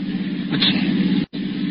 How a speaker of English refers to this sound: What's that? A car was coming over the top of the hill.